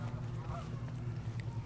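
Geese honk repeatedly, harsh nasal calls layered over one another in a steady, fairly quiet chorus with no voices.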